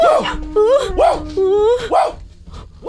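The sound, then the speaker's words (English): A puppy gives a series of high, rising-and-falling yips blended with drawn-out whimpering whines, repeating roughly once a second, fairly loud with no one talking. “And what a dear little puppy it was.”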